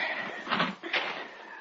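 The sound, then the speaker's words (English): Huge, heavy, slightly ajar wooden doors at the entrance of a gray building being pushed open with effort: a long, grinding scrape with a steady creaking tone, swelling in two rough surges, with no voices over it. “The huge wooden doors were slightly ajar at the entrance, and with an effort, Marek pushed them open and led us inside.”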